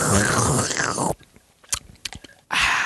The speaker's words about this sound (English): This soup is really good. It is really good. I have finished it and slurping the bowl.